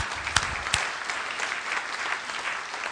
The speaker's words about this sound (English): A round of applause for him.